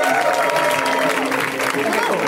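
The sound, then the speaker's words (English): A show audience claps loudly and steadily throughout, welcoming guest April Richardson, a dense, continuous wash of applause with voices cheering and calling out underneath it. “Give it up for April.”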